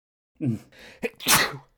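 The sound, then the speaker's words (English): A single loud sneeze: a short voiced intake, a brief pause, then a sharp, breathy burst that trails off quickly. “Bless you.”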